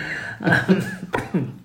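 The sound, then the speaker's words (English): A person coughs in a short series of rough, throaty bursts: two quick hacks, a pause, then two more, fairly loud, with no speech around them. “That's not a COVID cough, listener.”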